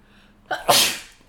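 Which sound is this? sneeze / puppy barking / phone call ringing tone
sneeze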